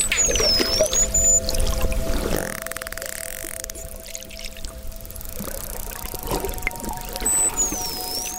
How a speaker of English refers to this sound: This is what it sounds like underwater.